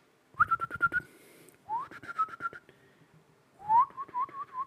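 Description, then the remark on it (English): A person whistles three short phrases imitating morning birdsong. Each starts with a quick upward swoop, then holds a bright, warbling note, with brief pauses between. The last phrase trills and wavers. “And so we're in the woods, and then like 6 a.m. rolls around, and the birds are just out, dude.”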